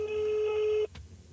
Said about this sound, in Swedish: Så du har telefonnumret? Ja, vi ringer henne nu.